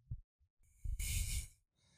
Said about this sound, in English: Oh, they're breathing so loud.